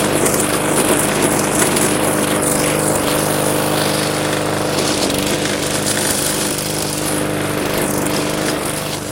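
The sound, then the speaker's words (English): A lawn mower engine runs steadily and loudly while mowing a bumpy yard, its constant buzzing drone holding an even pitch throughout with no speech over it. “before I started mowing”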